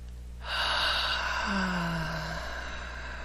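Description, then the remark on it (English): A single deep, breathy inhale and exhale, airy and fairly loud, with a faint low hum in the background and no talking. “Another nice deep breath.”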